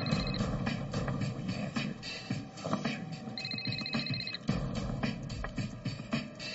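A telephone rings in short trilling bursts, one brief burst at the start and a longer one midway, over a steady rattling mechanical background.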